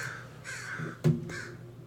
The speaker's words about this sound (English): Gunny, you got crows in your room.